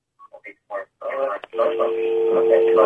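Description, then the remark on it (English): A few quick telephone keypad tones beep in succession as a caller on line 2 of a radio phone-in dials, then a steady tone hums on the line beneath a busy mix of voices and noise. “Don't try and dial another number! You've dialed into the radio!”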